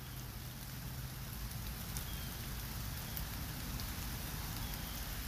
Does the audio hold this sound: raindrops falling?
yes